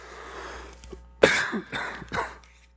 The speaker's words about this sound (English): When the microphone's attached to your head and you turn away from it to cough, it just kind of goes with you. So sorry about that.